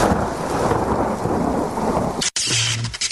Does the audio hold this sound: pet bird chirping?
no